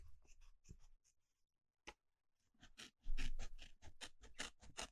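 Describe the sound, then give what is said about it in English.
Sharp scissors cut: a few scattered crisp snips, a short pause, then a quicker, louder run of rhythmic slicing strokes. “God, these are really sharp, aren't they? Yes, they are. They're scissors.”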